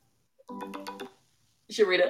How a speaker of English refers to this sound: I'm sorry, my phone started ringing.